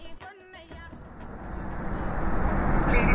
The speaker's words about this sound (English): To get there, we take a plane